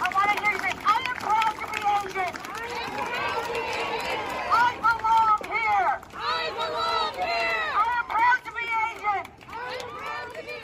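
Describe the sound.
A protest crowd in Pittsburgh chants through a bullhorn as the actress Sandra Oh leads the chant at a gathering after the Atlanta shooting. Many raised voices overlap in a loud, steady chorus that breaks into choppier rhythmic bursts partway through.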